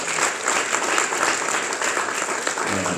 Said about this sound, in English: My choir has come with me. And my deacon, won't you give them a hand clap of praise again?